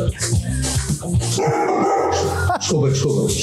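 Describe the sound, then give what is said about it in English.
In a played video, a dog barks and whines in short, agitated bursts with yips mixed in after a man shuts off the TV it was watching, sounding slightly muffled as if through a speaker, with a voice talking over it. “The dogs are watching TV. The guy comes in from the other room and shuts it off. And this guy isn't happy at all.”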